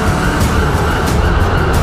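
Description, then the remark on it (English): Police car sirens wail loud over a dense, rumbling wash of engine and traffic noise as a squadron of police cars and a helicopter chase the Batmobile through traffic, continuous throughout the short stretch with no one speaking. “A squadron of police cars was chasing him, along with a helicopter.”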